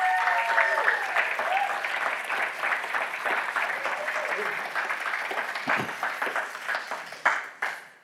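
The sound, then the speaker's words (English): A church audience applauds its four pastors for Pastor Appreciation Month, many hands clapping in a dense, sustained wash that holds for several seconds before tapering off near the end, with a few faint cheers mixed in. “With that, it is also Pastor Appreciation Month, so if we could give them a round of applause.”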